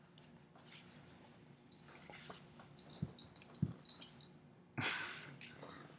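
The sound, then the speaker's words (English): A dog indoors, calm and relaxed, wheezes and breathes in short, raspy bursts, with a few soft whimpery squeaks mixed in and a louder huff near the end. No one speaks. “There's a dog in here for those who Don't know.”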